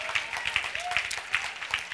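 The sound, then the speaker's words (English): A church audience gives the Lord a clap of praise during a morning service, clapping together in a steady, dense burst of applause, many hands making a bright, continuous patter that holds even in loudness throughout. “One more time, give the Lord a clap of praise this morning.”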